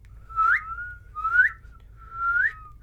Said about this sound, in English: I can't whistle very well. I can blow out a little bit, though. Let me try it.